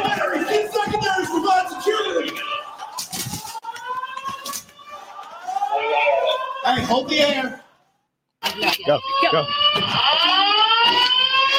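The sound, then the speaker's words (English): A loud fire alarm blares continuously in a school with a shrill, wavering tone, mixed with voices and sharp bursts of noise. It cuts out briefly near the end, then resumes just as loud. “The alarm's going off the whole fucking time.”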